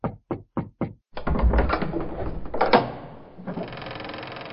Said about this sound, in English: She summoned her courage and knocked on the cold, dark wooden door.